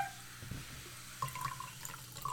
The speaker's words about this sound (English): It's hard to pour this evenly because this is fresh enough to have a pretty good head to it. That was a weird fizz. It was. Okay. So yeah, this is a brown soda.